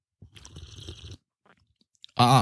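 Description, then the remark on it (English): A wet slurping sip of hot peppermint tea lasts about a second, followed by a short pause, faint mouth sounds, and then a loud voiced exhale or sound at the end. “Let me take a sip of my tea here. Peppermint tea.”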